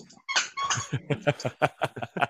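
A dog chewing a squeaky toy, squeaking in a quick run of about eight short, shrill bursts that come in a steady, uneven rhythm, fairly loud.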